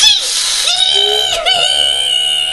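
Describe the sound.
A person imitates an enraged cat, starting with a harsh breathy hiss that turns into a strained, wavering yowl. It is loud and sustained for a couple of seconds, with a brief catch midway.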